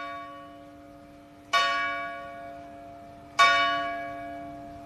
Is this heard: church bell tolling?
yes